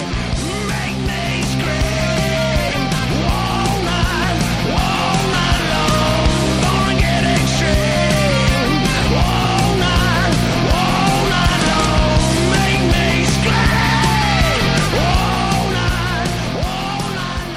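A loud, dense rock song plays continuously with driving full-band instrumentation and a strained, yelling vocal riding on top, steady in volume throughout.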